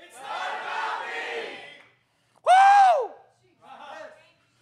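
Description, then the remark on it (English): A crowd shouts the phrase "It's not about me!" together in unison for about two seconds, then one loud voice yells with a rising-and-falling pitch, followed by a shorter, fainter burst of crowd voices. “Somebody just scream it with me. It's not about me!”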